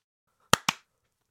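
A group claps hands after a countdown of 3, 2, 1, in two sharp, loud bursts a split second apart, failing to clap in unison, followed by silence with no talking.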